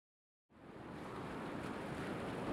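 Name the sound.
ocean waves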